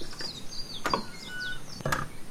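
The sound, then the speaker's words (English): The closed doors of a big old mansion are pushed open with two short bumps about a second apart, while birds chirp and tweet softly in the background. No one speaks. “So again, you make the decision to go over and push open those closed doors.”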